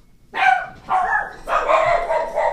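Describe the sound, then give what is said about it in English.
A dog barks in three or four drawn-out, loud bursts, the later ones running together into a continuous yowling bark. No one speaks. “I love the dogs.”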